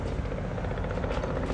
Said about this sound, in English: There's a helicopter. Wee woo. We're just gonna wait for the helicopter. You guys could listen to it for a second.